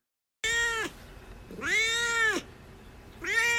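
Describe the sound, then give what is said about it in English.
A cat named Duarte meows three times: a short meow, a longer drawn-out one, then a third that gets cut off. The cries are loud and clear, with no talking. “All right, speaking of winners, it's time for Duarte's Corner, where my cat Duarte will give his opinions on the book.”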